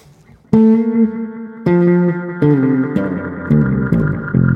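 A bass guitar plays a slow series of sustained notes through a Carbon Copy Bright analog delay pedal from MHSAR, each new note overlapping the fading repeats of the last, producing a warm, smeared echo with no talking.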